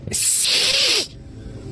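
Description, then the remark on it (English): A person imitates an angry cat with a single loud, breathy hiss lasting about a second, then it cuts off into quiet. “as soon as your hand even comes into the vicinity of her head, she whips around and her eyes widen, claws are out, and back arched, she hisses.”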